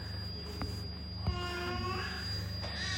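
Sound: alarm going off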